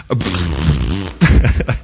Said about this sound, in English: Don't fart when you're in line at the TSA, okay? You'll get singled out.